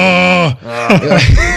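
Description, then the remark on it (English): A man lets out a loud, guttural mock Spartan rage scream, imitating Kratos from the game being reviewed, in two strained bursts: the first a long, harsh roar that drops in pitch, the second rougher and more broken, like a mock battle cry. “So you probably could have done like a little bit more of a guttural Kratos.”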